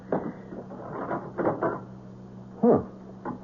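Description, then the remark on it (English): A front door is handled and opened: a few soft clunks and rattles, then a louder knock-like thump near the end, over a low steady hum with no talking. “Door's open.”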